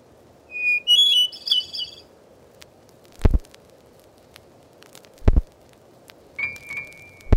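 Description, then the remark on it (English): Bright songs and calls of familiar North American birds, chirps and whistled notes in short bursts over a soft, steady outdoor hiss, with a few sharp clicks or taps between the calls, recorded in woods, fields and gardens by the Laboratory of Ornithology at Cornell University. “Here are the songs and calls of 60 familiar birds, as recorded in the woods, fields, and gardens of North America by the Laboratory of Ornithology at Cornell University.”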